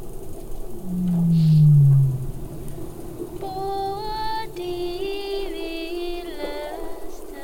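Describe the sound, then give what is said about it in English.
Underwater whale whoop calls: one loud, low downward-sweeping call near the start, then a series of fainter, higher tonal calls with rich harmonics continuing in the background over a steady hiss. “And in the background, actually, in that one, you can hear some of the whoop whoop whoop sounds.”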